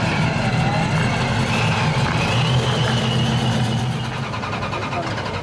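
A Hemi Barracuda muscle car engine revs loudly, a deep, steady throaty roar with slight surges in pitch throughout, and no voices over it.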